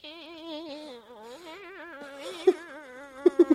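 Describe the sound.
A lone voice makes a nasal, droning chant-like sound aimed at a dog, its pitch warbling steadily up and down, ending with a few short, punchy accented notes.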